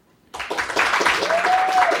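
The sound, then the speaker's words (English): An audience judging a Netflix show bursts into a round of applause that starts abruptly and keeps going as a dense, steady wash of clapping, with a short high whistle rising and falling partway through. “Would you be satisfied so far by a round of applause with what you've seen?”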